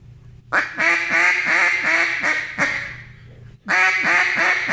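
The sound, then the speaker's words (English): A duck call blown to imitate a boss hen mallard: a loud run of rapid descending quacks, a short pause, then another burst of quacks starting up. “And speaking of the audio part, do real quick a boss hen.”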